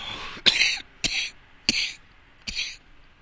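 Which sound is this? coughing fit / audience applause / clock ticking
coughing fit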